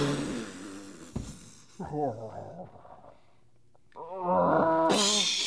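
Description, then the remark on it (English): A bear roars in a series of deep, growling bellows, rough and snorting, with a brief quieter pause before a final, louder, sustained roar ending in a harsh breathy rasp. “Just shoot the bear, Randall. Just shoot.”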